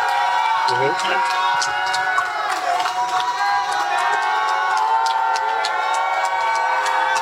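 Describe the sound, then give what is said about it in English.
A crowd cheers loudly and steadily, with clapping and scattered whoops and high whistles rising above a continuous roar that holds for several seconds without letting up. “So I need a round of applause for my brother”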